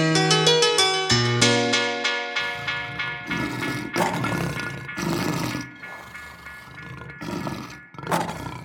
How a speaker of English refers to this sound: You want to hear the lions roar? Roar! Yeah.